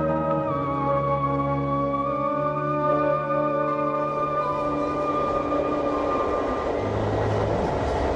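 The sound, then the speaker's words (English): An Amtrak passenger train heading towards New York, around Syracuse at 3 o'clock in the morning, rolls along the rails with a steady, continuous rumble and high whining tones that slowly shift in pitch, heard from inside the moving car with no talking. “it's now 3 o'clock in the morning, and I'm on an Amtrak train, heading towards New York.”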